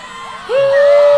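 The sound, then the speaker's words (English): A crowd gathered at a launch pad cheers to see off departing passengers at a liftoff, in a dense, steady roar, and about halfway through a single loud whoop or whistle rises and holds above the noise until the end. “Passengers were given paper streamers and gathered on the exterior deck facing the launch pad, where a crowd had gathered to see them off.”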